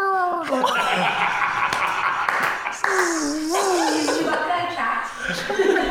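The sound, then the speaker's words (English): A person's voice imitates a growling, cat-like creature with drawn-out, warbling yowls that rise and fall in pitch, loud, continuing for several seconds with brief breaks. “Stepped on a cat right there. Sound of cats.”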